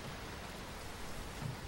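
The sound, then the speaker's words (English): Heavy rain pours in a steady, dense hiss with no breaks during a storm with lightning strikes, heard at a fairly low level and with no voices present. “And in the heavy rain, you can only assume that your movements are a little more shielded than they usually would.”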